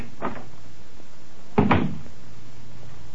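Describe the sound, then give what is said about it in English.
A door opens: a faint click of the latch, then after a short pause a louder wooden clunk and creak, with nothing else but quiet room tone. It is the door to the Black Museum on the lower ground floor of New Scotland Yard. “Behind this door”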